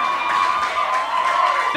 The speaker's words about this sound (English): There are so many women screaming. If one of your girlfriends is screaming that loud, look at her like this.